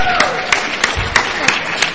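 Audience applause for an audience member: a dense wash of clapping with sharper claps standing out in a steady rhythm, about three per second, moderately loud, lasting around two seconds.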